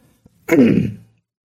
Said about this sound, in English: You guys, just one second. I have to cough. I have to cough. Give me just one second.